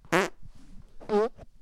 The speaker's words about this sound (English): Was that a double fart? Dude, that's gross.